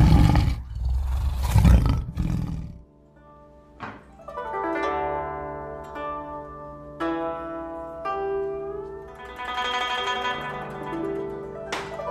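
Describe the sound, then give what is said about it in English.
A tiger, Miao, rushing out from the underbrush, lets out a loud, rumbling roar for about three seconds; then it cuts off and ringing musical notes play on without it. “Yet no sooner had he fastened the last strap than out rushed the tiger Miao from the underbrush and leapt upon Mr.”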